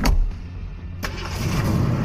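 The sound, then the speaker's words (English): A sports car engine in a garage turns over and fires up with two sharp bursts about a second apart, then settles into a loud, low rumbling rev. “You're gonna need the garage doors open for that, Coben. A sports car like that's not gonna knock anything down.”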